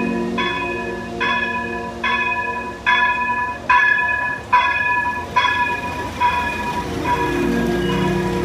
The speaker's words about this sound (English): Now the quote-unquote old train is rolling up. The old train are rolling up. As you can hear.